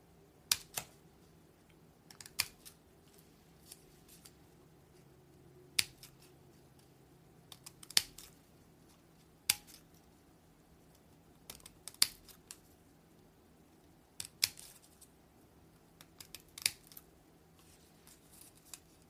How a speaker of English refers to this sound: A good pair of scissors.